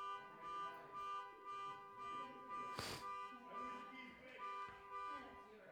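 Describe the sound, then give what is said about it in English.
A car alarm blares outside, a loud, harmonic electronic tone pulsing in a steady repeating cycle for the whole stretch, with a sharp thump partway through. “Is your car okay? Is somebody messing with it out there?”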